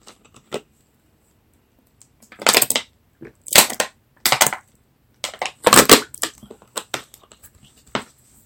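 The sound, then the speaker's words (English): Several heavy, crunching thuds land at irregular intervals, some in quick pairs, with lighter knocks and clicks in between, as heads cut off with a sword bounce across a floor. No one speaks. “In the kitchen, peeling spuds, Cinderella heard the spuds bouncing heads upon the floor, and she poked her own around the door.”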